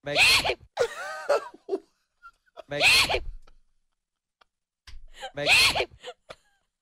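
Three loud, theatrical sneezes spaced a couple of seconds apart, each a drawn-out wind-up breath bursting into a forceful, noisy 'choo', with brief breathy sounds between them.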